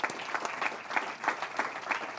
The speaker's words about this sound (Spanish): Pueden dar un aplauso otra vez al Señor Jesucristo. Give a clap offering to our Lord.